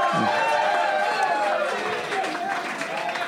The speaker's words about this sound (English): And when I'm right, I would like for you guys to cheer. Give that a shot right now.